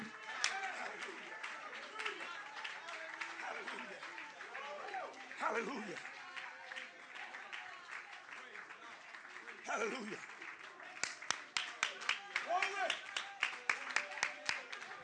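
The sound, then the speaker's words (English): A church audience claps steadily in praise of God during a service, many hands overlapping in a dense patter, with voices calling out over it and a run of sharper, rhythmic claps toward the end. “Clap your hands one more time and just give God praise.”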